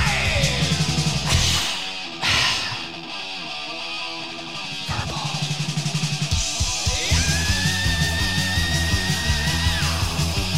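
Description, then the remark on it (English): Loud, dense heavy metal song with the singer's harsh, high sustained vocal scream cutting through near the end, held for several seconds over pounding drums and distorted guitars. “That always gave me the creeps. His scream? Yes. It's evil.”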